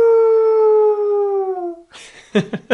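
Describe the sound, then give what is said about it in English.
A dingo lets out a single long, clear howl that holds steady and slowly sinks in pitch for about two seconds, then breaks into a few short, rough yelping bursts. “So, dingoes, guys, what are dingoes? Have you heard of dingoes before? Let me give you a hint.”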